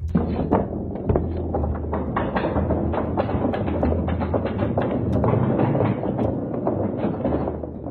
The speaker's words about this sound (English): It had stopped seeing use in 1942 until it was restored in 2012. You can actually book tours of this theater where you can see and hear it in action. Here's some actual audio of a thunder run.